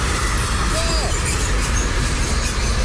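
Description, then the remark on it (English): A loud, continuous rumble of a passing freight train heading to Milan fills the whole stretch, dense low-end roar with a brief squealing tone near the start, steady throughout. “That was the freight train going past.”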